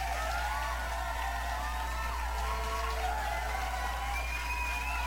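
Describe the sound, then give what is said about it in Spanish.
A crowd cheers and applauds without pause, with high whoops and whistle-like cries rising over a dense, steady wash of clapping and voices at a fairly constant loudness. “Un aplauso chingado.”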